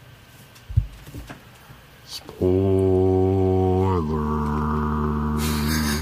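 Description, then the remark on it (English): After a single spoken word, a voice imitates a foghorn as a spoiler warning: a loud, low, buzzing drone held steadily for about three and a half seconds, dipping slightly in pitch partway through. “I'm going to talk a little bit about it, so you better sound off the spoiler warning foghorn right now.”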